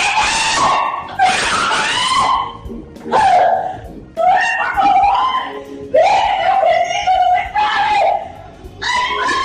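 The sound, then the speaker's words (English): A woman screams in panic, loud, high-pitched shrieks and wails in repeated bursts with only brief breaths between them for about nine seconds, as she struggles to remove an object stuck inside her. “And now she's just totally freaking out, screaming.”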